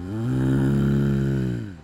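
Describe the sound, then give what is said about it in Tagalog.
A person imitates a carabao: one long, low, rough snorting growl that holds a steady pitch for nearly two seconds, loud and alone, with a raspy, rattling texture before it fades out. “Wala namang kalabaw doon at hindi rin siya tulog ng kalabaw.”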